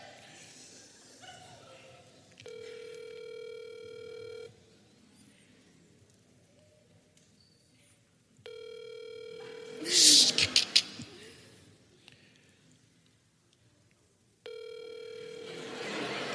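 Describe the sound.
A phone call rings out over a speakerphone: a steady electronic ringback tone repeats three times, each about two seconds long with quiet gaps between, and a brief sharp noise cuts in midway.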